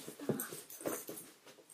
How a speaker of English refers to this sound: My dog's trying to bite my arm.